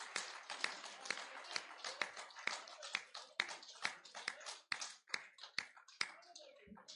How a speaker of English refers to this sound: Let's give God a hand clap for that testimony. Yes.